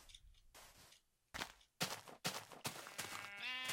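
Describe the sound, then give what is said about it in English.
A sheep bleats with a wavering, quavering cry near the end, after several short noisy bursts like shuffling or hoof movement. Moderately loud, with no talking. “More sheep.”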